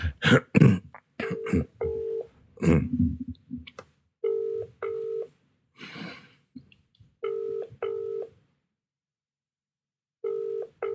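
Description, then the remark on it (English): An outgoing WhatsApp call's ringback tone repeats as steady paired beeps every few seconds and goes unanswered, preceded by a few coughs and throat clearing at the start. “It's ringing a long time without an answer phone.”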